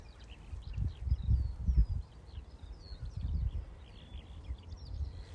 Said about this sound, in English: And I'm just going to be a little bit quiet because the skylark is right above my head. So I'll have a listen to this.